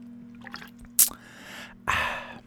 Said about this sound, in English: Oh, man, my voice. Hold on. Take a sip of